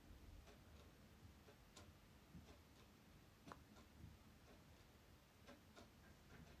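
Several clocks tick softly, their overlapping clicks forming a steady, slightly uneven rhythm against a low hum, with no one speaking.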